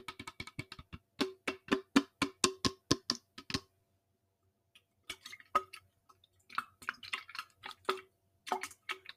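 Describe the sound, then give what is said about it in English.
Crisp tongue clicks made as ASMR, in quick rhythmic bursts, wet and popping like drips, with a short pause partway through before softer, more scattered mouth sounds resume. “So yeah, that was my first try at ASMR. With clicking, tongue clicking a thing.”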